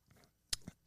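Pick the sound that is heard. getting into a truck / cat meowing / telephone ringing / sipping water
sipping water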